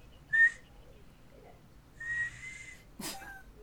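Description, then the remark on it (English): A person attempts to whistle, producing a short breathy chirp, then a wavering, airy tone that fizzles out, followed by a sharp puff of breath. Faint, with no talking. “His whistling trails off to... And I just think we've discovered another thing … can't do.”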